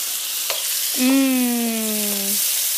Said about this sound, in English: I'm never really afraid of some of the sputters that happen. It's not really advised to throw in, like, frozen stuff, frozen vegetables into hot oil, because it will sputter. Water and oil will always sputter. But this is not so bad.